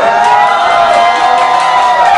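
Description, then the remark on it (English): An audience gives a shout on request, shouting and cheering together in a loud, sustained roar, many voices blending into one continuous wall of sound with scattered whoops rising above it. “And I believe, why don't we just stop right now and let's give a shout.”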